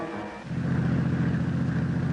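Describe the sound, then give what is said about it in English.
A truck engine roars in abruptly and holds a loud, steady low rumble, filling the short stretch with no voices. “look out! That truck! Turn the wheel! Go off the road!”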